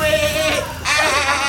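A goat in a barn bleats loudly in two quick, wavering cries, the second starting right after the first ends, with a strained, nasal quality throughout.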